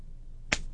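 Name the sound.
hand slapping a person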